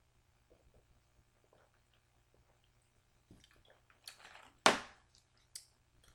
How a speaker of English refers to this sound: Drink of water here.